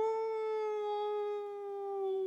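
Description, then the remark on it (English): A single long wolf-like howl holds a steady, clear pitch for a couple of seconds and sinks slightly toward the end, fairly loud with nothing else around it. “But the wolf was so hungry, he lifted up his head to the sky and he cried, "Ow!"”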